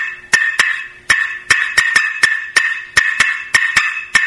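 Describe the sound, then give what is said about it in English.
A turkey hen cutting: a quick, uneven run of about a dozen sharp, loud clucks, some bunched in pairs, with no talking over them. “So really, at its most basic, cutting is just a fast-paced series of clucks.”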